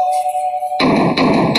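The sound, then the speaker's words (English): A faint steady hum, then loud, heavy banging on a door: three forceful blows in quick succession, each boom ringing out and running into the next. “Hey, yo, who the fuck is that banging on my...”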